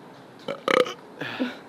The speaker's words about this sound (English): My friend, I have to burp and it's not happening.